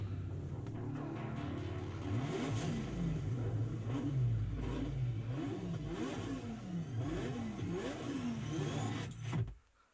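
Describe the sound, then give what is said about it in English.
Car engines rev loudly and repeatedly in a top-secret teaser video posted on the official Sonic the Hedgehog Twitter, pitch climbing and dropping in rising-and-falling sweeps, with sharp bursts throughout before cutting off abruptly at the end. “Oh, do they have real cars?”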